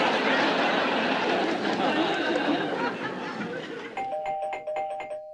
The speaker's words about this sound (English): That's the trivia bell, and that means one thing.